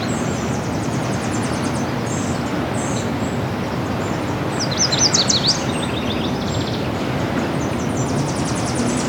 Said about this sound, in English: Nashville warbler here.